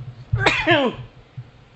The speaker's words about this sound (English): So, oh shit, I got to sneeze.